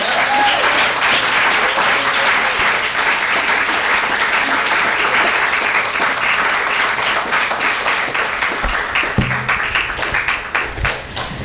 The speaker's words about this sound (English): It's quite possible they've traveled farther to be here tonight than any other author I've ever introduced, so I want to make sure that they feel particularly welcome here in LA and at Skylight, so let's give them a big round of applause.